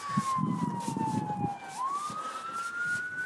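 An emergency vehicle siren wails, sweeping slowly down and back up in pitch, loud, over low rumbling street noise and traffic in a city on a snowy night.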